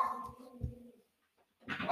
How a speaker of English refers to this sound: Probably hear some dog stuff going on. We're going to keep it going. One take.